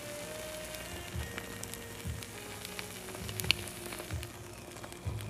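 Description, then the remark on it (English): French toast sizzles steadily in a frying pan, a continuous crackling hiss with scattered sharp pops and a few soft low thumps, no voices present. “And then we're gonna plop it, do a little plop flop, right in the pan. Oh, good sizzle.”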